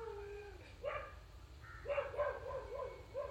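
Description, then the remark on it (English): A dog barks, a few short, high-pitched yelps after a brief whining note, then a quick irregular run of barks over a low background hum. “Do you listen to that dog?”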